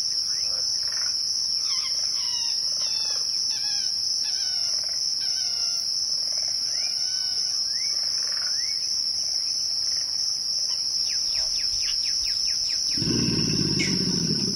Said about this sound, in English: We leave you this week with the voice of the Louisiana Bayou. Kim Wilson recorded this chorus of bird songs, frog calls, alligator grunts, and the squeal of an amphibian being skewered by a heron in the primordial waters of the bayou.